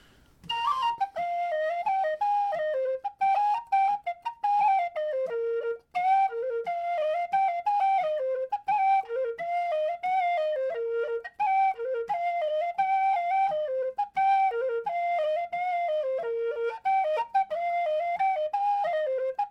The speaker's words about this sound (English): This is a tune called, another one from Elizabeth Ross's manuscript. It is simply called Dark Girl of the Sheep on Whistle.